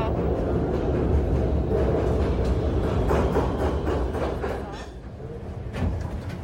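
A subway train to 33rd Street rumbles into the station, a loud, steady low roar with scattered metallic clatter that eases slightly near the end before swelling again.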